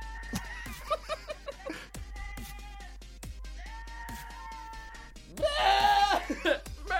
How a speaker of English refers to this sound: Okay, funny goat screaming like humans. Just turn it up real fast. This is my laptop playing. Is that a goat? Those are fake, right? Nope, that's a real goat.